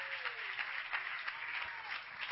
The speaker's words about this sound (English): Somebody clap their hands to the Lord right now.